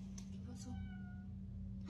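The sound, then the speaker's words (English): A single drawn-out, cat-like meow at a house's front door at night, fairly faint, rising and fading over about a second against a steady low background hum. “One night, the family wakes up after hearing what sounds like a cat meowing at their front door.”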